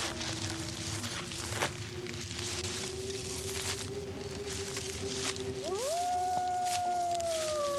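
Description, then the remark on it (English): A werewolf howl sound effect: a long, low sustained tone that suddenly swoops upward and holds a higher, eerie pitch, set against a steady rumbling, hissing background with a few soft thumps. “Werewolf action.”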